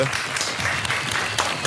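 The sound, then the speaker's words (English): A burst of applause: dense, steady clapping from many hands, a continuous crackling wash with a few sharper claps standing out, fairly loud and without any voices over it. “Let's clap it up for me.”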